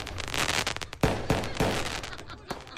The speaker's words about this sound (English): And when the clock strikes 12, the sky fills with fireworks, not bombs.